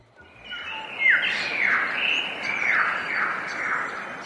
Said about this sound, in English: We leave you this week in the Blue Mountains. Bird calls reverberate in a deep gorge in Blue Mountains National Park. Here, west of Sydney, Australia, it's a landscape filled with cliffs and waterfalls and sandstone rock formations